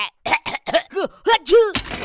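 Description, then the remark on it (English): A cartoonish sneeze from Kapow, a cartoon character made of tools, who sneezes out a wrench and two number 9 bolts. It is a string of short, pitched vocal gasps rising and falling, building up before a final noisy, breathy burst. Fairly loud, with no other talk. “Well, that's a first. I sneezed a wrench.”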